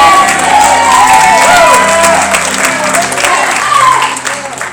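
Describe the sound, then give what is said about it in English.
A crowd cheers and applauds a young woman loudly and steadily for several seconds, a dense wash of clapping with scattered shouts and high whoops rising above it. “Cheer for this girl if you want to.”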